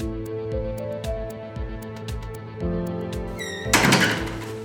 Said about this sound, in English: when the door slammed open again, and there was the chief, red-faced, sweating, and glowering.